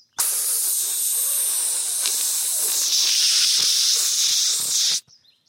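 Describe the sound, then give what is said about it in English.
A loud, steady hiss of shaken Coca-Cola spraying out of a device on the back of a hand at the push of a button, cutting a piece of wood in half: a continuous jet for about five seconds, bright and airy, with faint crackles underneath before it cuts off abruptly. “I'm going to shake my hand to get the Coca-Cola all ready to spray out, and then I'll push this button.”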